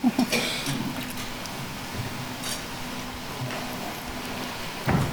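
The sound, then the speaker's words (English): A door is pulled shut in a room with a steady hum, with a couple of latch clicks and a soft thud near the end; no one speaks. “Could you go ahead and shut that door, please, because we're getting a lot of feedback?”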